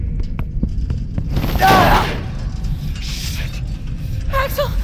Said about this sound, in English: Try yanking the lever just as I smash into the door. Okay. One, two, three.